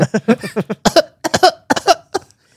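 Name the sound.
exaggerated fake cough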